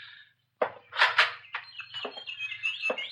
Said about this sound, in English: Quite a collection of canaries you've got here.